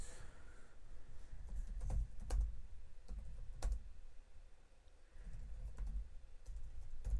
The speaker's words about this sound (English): Almost. He's typing almost.